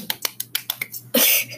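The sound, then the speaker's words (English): About six sharp, quick claps in an uneven rhythm, followed by a brief louder, hissing burst of noise. It sounds like a rough, homemade clapping sound effect with no voices. “I made that myself. I'm not paying premium for clapping music.”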